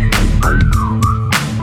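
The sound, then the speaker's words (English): A sliding whistle tone rides over a loud, bass-heavy beat with sharp percussive hits, dipping in pitch through the middle and briefly returning at the end. “Damn, that fat had to whistle like.”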